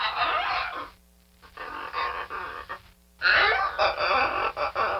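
Harsh, raspy squawks from a macaw, a New World parrot, come in three long bursts separated by short gaps, loud, with no talking.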